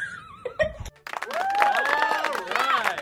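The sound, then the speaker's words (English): A crowd claps along in a steady, dense patter of sharp hand claps, with high, sliding whoops and cries rising over it after a brief tonal opening and a short pause. “Clapping along on the big clap.”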